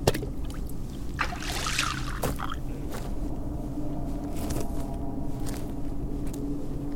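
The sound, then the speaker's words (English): Water trickles and splashes into a cup, fetched for a creature, with a fuller pour early on, then scattered drips and splashes over a steady low background rumble. “Look, we're getting water for that creature, and that's that.”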